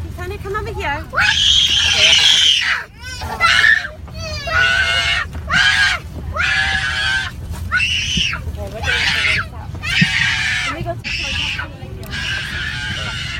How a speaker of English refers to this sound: And the most distressing for the other passengers was the demonic screaming. Oh. It was all captured on camera. Here's a small clip of some of the screaming by that child.